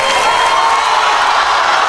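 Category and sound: crowd, studio audience cheering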